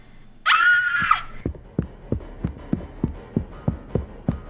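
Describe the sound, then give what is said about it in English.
A woman on a cruise ship, on discovering dead bodies, lets out a short, piercing, high-pitched scream lasting about half a second, followed by a steady series of soft, evenly spaced thuds like a pounding heartbeat. “What happened and why were you screaming?”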